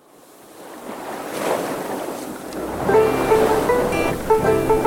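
Ocean waves wash onto a beach in a steady, hissing rush that swells and builds, and about halfway through, sustained musical tones rise in over the surf.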